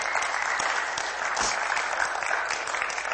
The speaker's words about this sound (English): Amen. You clap.